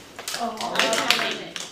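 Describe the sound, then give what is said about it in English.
Several sharp hand claps in a steady, measured beat as students in an English class clap out the syllables of the word "alternate" while voices chant along at the same rhythm. “Okay, this word is pronounced alternate. Say it with me. Alternate. How would you clap it?”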